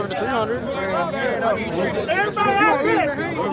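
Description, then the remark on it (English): A dense crowd at the No Guts, No Glory drag racing event talks and haggles over betting odds at once, a steady loud babble with several voices rising above the din, no single speaker standing out. “In the crowd, there's a lot of haggling going on.”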